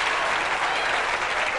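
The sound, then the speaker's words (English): Steady, dense applause from a large studio audience as Ed Sullivan introduces Paul Newman, who stands up in the audience, a continuous wash of clapping hands that stays loud and even throughout with no voices rising above it. “And they play a ghostly clip of the real Ed Sullivan introducing the real Paul Newman, and Paul Newman just stands up in the audience and there's like a 2 minute applause break.”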